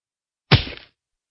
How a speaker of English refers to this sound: My aunt's huge hand swept across my face.